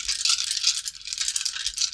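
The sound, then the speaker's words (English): A big handful of dice being rolled rattles and clatters nonstop for two seconds, a dense, bright, crackling tumble with no pauses and no voices. “Holy shit, that's a lot of dice.”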